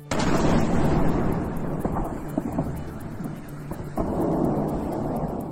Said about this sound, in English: Several explosions have rocked the Ukrainian capital Kiev, with at least one apartment building badly damaged and three people injured.